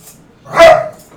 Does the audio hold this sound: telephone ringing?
no